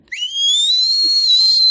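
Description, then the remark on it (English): A person lets out one long, piercing falsetto screech imitating a pterodactyl. It swoops up sharply at the start, then holds a steady, shrill pitch, loud and alone with no talking. “I'm a pterodactyl. You screech higher than my little sister.”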